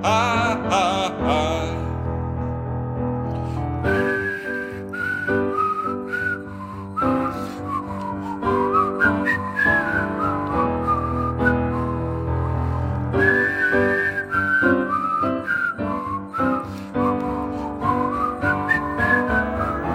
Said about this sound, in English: It's whistling time.